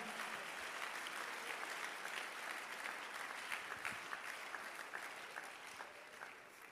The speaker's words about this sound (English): You are not even clapping your hands well.